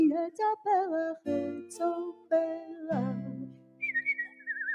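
A song plays with a warm, wavering melodic lead over sustained backing tones, then a clear, high whistled melody takes over near the end, sliding gently between notes.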